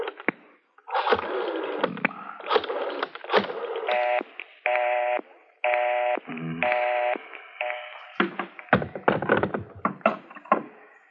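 A telephone being dialed: a run of short clicks and clunks, then several steady tone bursts in quick succession, fairly loud, with no voices.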